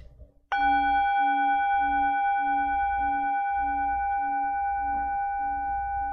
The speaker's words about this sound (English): When the meditation bell is empty, the resonating sound helps us wake up and restores our awareness to the present moment.